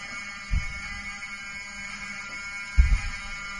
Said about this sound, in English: Open the door. I want them to hear the fire alarm. Open the door. I want people to hear this live to the 16 million people listening.